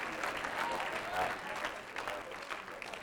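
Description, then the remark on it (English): A church audience claps their hands together during a sermon in a steady, dense wash of applause that holds at an even loudness throughout, with murmuring voices mixed in underneath. “Oh, my Lord of heaven, clap your hands all over the building.”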